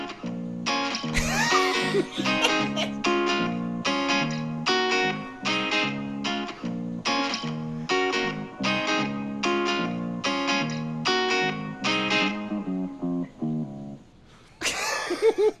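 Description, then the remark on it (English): A short musical theme jingle with an echo effect plays on its own, a steady rhythm of repeated bright notes for about fourteen seconds, then a brief noisy burst at the end. “Oh, we got the echo on there too?”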